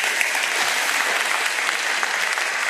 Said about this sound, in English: Give him another round of applause, folks.